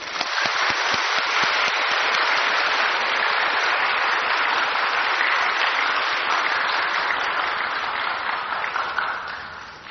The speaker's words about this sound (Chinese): 现在我们以最热烈掌声恭迎师父开示。